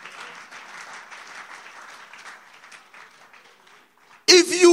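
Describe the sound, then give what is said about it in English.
An audience claps in a steady, moderate round of applause for about four seconds before a loud voice abruptly cuts in near the end. “You are not clapping because you think that is not true.”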